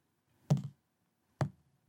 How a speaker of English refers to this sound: So I'm rolling three dice. You are rolling two dice. Two dice.